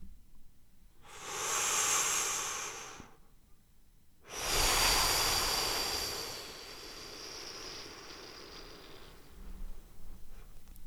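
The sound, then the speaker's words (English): Two long, hissing ujjayi throat breaths, a pranayama breathing technique, sounding like soft ocean waves: a shorter one, a brief pause, then a longer exhale that slowly fades. No one speaks. “Sometimes I call it Ujjayi breath. Ujjayi meaning ocean. And the name ocean comes from the sound that's made with the breathing.”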